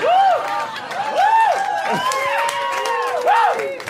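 audience applause and cheering

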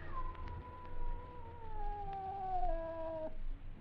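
cat yowling

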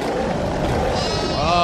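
bear roar sound effect

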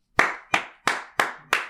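hand clapping

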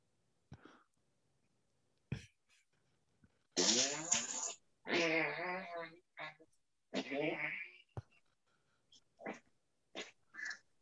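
fart

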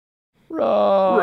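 roar

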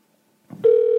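telephone call ringing

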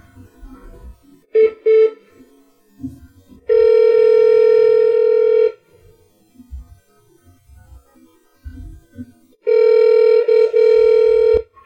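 telephone call ringing

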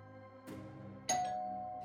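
doorbell ding-dong chime

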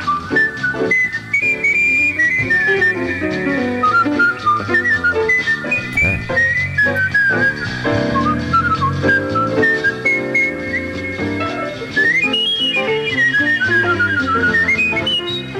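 whistled melody

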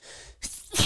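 sneeze

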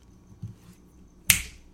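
finger snap

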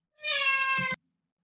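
cat meowing

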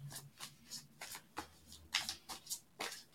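tarot cards being shuffled

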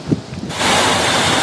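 strong wind

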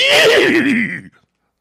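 horse neigh sound effect

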